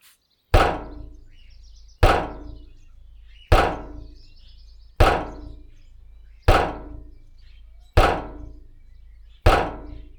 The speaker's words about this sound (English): We're not letting you out. And it rattles. It rattles a little bit. The door of this basement.